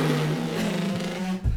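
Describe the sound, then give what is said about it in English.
A person vocally imitates a motorcycle engine revving, a steady buzzing drone held for about a second and a half before a brief dip and a rougher burst at the end. “But I might not be great at motorcycle impressions”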